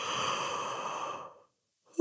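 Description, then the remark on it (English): A long, breathy pretend yawn, a big exaggerated yawn acted out, trails off after about a second; a short silence follows before a voice starts up again. “Let's start with that pretend yawn.”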